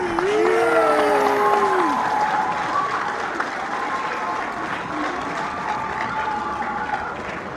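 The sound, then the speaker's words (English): A large crowd applauds and cheers continuously, dense clapping filling the scene with whoops and shouts rising above it, loud and sustained throughout. “The crowd cheers more.”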